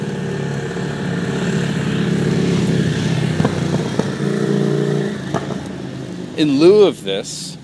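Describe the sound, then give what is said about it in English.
A motorcycle engine drones steadily, then its pitch swells and dips sharply as it roars past, the rumble fading out quickly afterward. “In lieu of this, as a motorcycle has driven through my thinking,”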